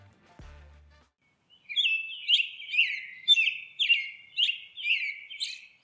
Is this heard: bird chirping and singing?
yes